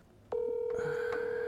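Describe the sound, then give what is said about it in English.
After a brief quiet moment, a steady electronic ringing tone of a phone call to a friend on speaker starts and holds unbroken to the end, fairly loud, with no one talking. “Once it rings two times, I get worried.”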